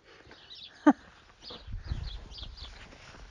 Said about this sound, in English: Okay, so, just going behind the Wiggly shed. I heard a cough over there. Who was that? Cow. They can't get coronavirus.